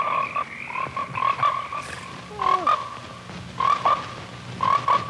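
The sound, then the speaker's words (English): Frogs croak in repeated bursts about every second, several overlapping calls, loud and rhythmic with a faint low rumble underneath and no voices, in the trailer for the film Frogs, an American International Picture. “Frogs, an American International Picture, rated PG. Today, the pond. Tomorrow, the world.”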